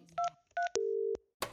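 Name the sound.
telephone keypad dialing tones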